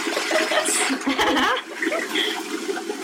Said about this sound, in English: Flush.